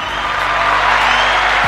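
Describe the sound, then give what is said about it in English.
A crowd applauds and cheers for a birthday, a dense, steady wash of clapping that stays loud and even for under two seconds, with no one speaking over it. “No need for applause.”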